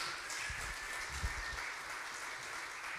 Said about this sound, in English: Can you give her a round of applause as she comes?